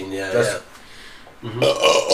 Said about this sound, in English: That's Belgium belching. Yeah, Belgium belching.